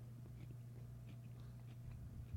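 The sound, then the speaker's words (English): Quiet mouth sounds of someone chewing food, with soft irregular crunches and wet clicks over a steady low hum, no talking. “Let me finish chewing.”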